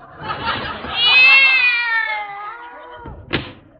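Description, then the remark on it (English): A cat inside a desk drawer lets out one long, drawn-out meow that slides downward in pitch, clear, followed by a short sharp thump as if something is shut. “Miss Brooks, what are those two cats doing in my desk?”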